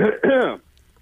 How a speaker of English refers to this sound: Yeah, excuse me. Sorry. I need to clear my throat now.